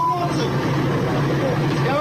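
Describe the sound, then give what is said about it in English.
A steady low rumble fills the interior of a moving city bus in Philadelphia, Pennsylvania, with engine drone and a thin whine rising and falling, while muffled voices murmur in the background. “This is a bus. This bus is in Philadelphia, Pennsylvania.”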